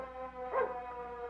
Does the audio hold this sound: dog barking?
yes